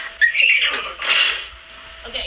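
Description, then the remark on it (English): A girl's voice imitates a horse whinnying: a high, shrill, wavering call in two quick surges, fairly loud, fading into a breathy tail. “This girl makes mimicking animal sounds.”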